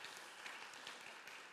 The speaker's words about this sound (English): One more round of applause